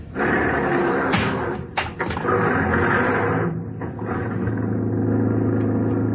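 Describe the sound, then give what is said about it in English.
A taxi drives through heavy night traffic with a steady, loud engine rumble and road noise, broken early on by a few sharp thumps, like a door slamming, before the drone settles back in. “Traffic is kind of heavy tonight.”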